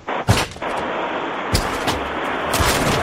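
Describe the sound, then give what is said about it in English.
Heavy, sharp thuds as someone kicks at a room door to break it in, about five blows at uneven intervals, each a loud bang over a steady background hiss. “Open the door. I'm going to kick it.”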